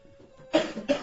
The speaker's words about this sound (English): Can you get through a sentence without stopping to cough? I was in a prod room earlier and my voice really hurts.